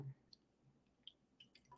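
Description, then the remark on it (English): Faint crackle of tiny bubbles popping at irregular intervals from sparkling water, with a few brief wet clicks and no voices. “Because I got my sparkling water today.”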